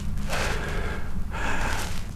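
Two loud, drawn-out breaths, each a forceful, exaggerated inhale that rushes in like a gasp, with no talking, demonstrating breathing into the upper chest to get air into the alveoli at the tops of the lungs.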